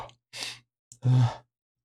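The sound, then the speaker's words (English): A couple of quick, breathy inhales build up as if toward a sneeze, then give way to a long, voiced exhale like a yawn or sigh, fairly loud with no talking. “I'm making a face because I feel like now I'm yawning. Okay, a sneeze into a yawn.”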